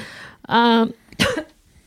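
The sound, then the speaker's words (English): A loud cough from a woman: a strained, voiced throat sound followed by a harsh, breathy cough burst, with no talking around it. “Oh, that cough.”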